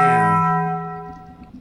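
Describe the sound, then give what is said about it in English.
A single loud bell bong, the Taco Bell bong, struck once, with rich ringing overtones that slowly fade away over about a second and a half; no voices. “I don't know why we played a Taco Bell thing.”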